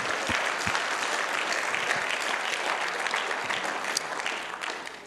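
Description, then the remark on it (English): A large group claps steadily for about five seconds, a dense, sustained wash of applause with no voices rising above it, as an audience answers a call to clap if ready for revival. “If you're ready for revival, clap your hands one more time.”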